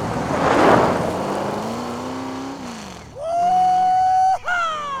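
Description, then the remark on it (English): A loud pickup truck engine roars and revs up, its pitch climbing steadily through a gear change as the truck speeds away over dirt with two people aboard, with no voices over it. “Soon, Craig joined her, and they took off like a scalded dog.”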